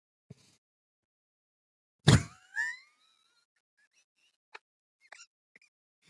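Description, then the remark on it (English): A doe deer's distress call: one loud, harsh bleat followed by a shorter, wavering high squeal. A few faint clicks come afterward, and no one speaks. “That's what a doe sounds like when she's like in distress.”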